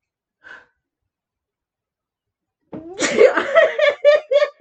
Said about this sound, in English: Bless you. I thought there was like a preemptive pause, like dramatic pause. No, I was sneezing.